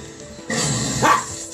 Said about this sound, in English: If you guys hear my dog running around or nagging or whatever, Wally, he's here and he's, you know, he gets bored.